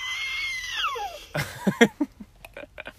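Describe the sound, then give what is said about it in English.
A child imitates the elephant her mom pretends to be: a loud, high, wavering squeal that slides downward for about a second, then a string of short, breathy sputtering bursts. “What kind of sound does she make when she pretends to be an elephant?”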